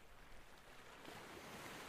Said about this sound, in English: And yet, despite all this beautiful scenery, the one thing that still sticks out above all, as you close your eyes, it's the sound of the waves lapping up against the sand,